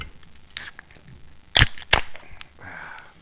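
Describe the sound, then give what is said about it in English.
A drink can is cracked open: two sharp metallic snaps in quick succession, followed by a short, soft hiss of fizz. “All right, well, let's crack her open and get her started.”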